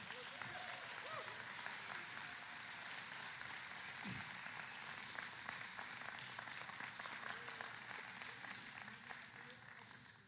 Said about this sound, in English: Give them a hand clap now.